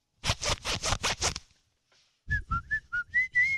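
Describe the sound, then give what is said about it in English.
A zipper is zipped to play a tune: six quick, rasping zipper strokes in a steady rhythm, a short pause, then six more zips, each carrying a pitched tone that shifts from stroke to stroke like a simple tune. “Maybe your zipper's out of tune.”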